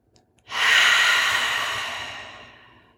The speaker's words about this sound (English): And then just deepen your breathing.